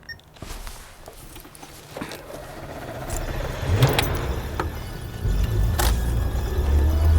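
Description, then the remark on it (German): A car engine turns over and catches, then revs and rumbles as the vehicle pulls away, its low droning growing steadily louder. A few light clicks and rattles sound at the start. “Aber ich fahre jetzt los.”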